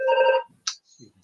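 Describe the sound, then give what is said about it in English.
A prayer hotline telephone gives one short, buzzy electronic ring lasting under half a second, followed by a sharp click and a few faint, low thumps. No one speaks. “We cut the phone, you see, it's still live.”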